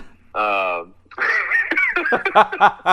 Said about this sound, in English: Oh, for sure. Let's see here. Let me get my throat right.